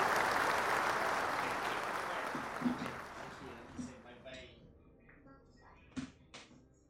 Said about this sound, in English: Let's everyone give a round of applause for Slot Sun coming in the building.